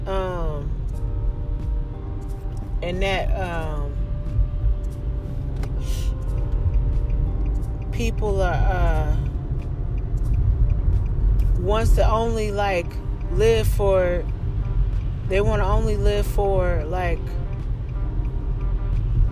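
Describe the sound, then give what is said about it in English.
A steady low rumble of road traffic runs throughout, with cars passing, while a man talks intermittently over the noise. “man, watching these cars, man, gotta watch these damn cars, man.”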